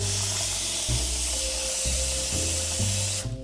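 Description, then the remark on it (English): Water runs steadily from a tap into a cooking pot being filled to boil eggs for egg salad, a loud continuous rushing splash with a low resonant tone that shifts and rises as the pot fills, then cuts off. “So I'm going to fill up my pot with some water.”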